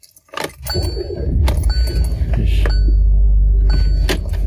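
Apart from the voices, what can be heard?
car keys jangling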